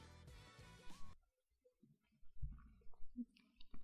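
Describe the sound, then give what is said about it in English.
Soft sipping and swallowing of wine from a glass, a few small wet slurps and gulps spread over a couple of seconds, following a brief louder, buzzy burst of sound at the start. “We've already opened the wine. Ready for the first sip?”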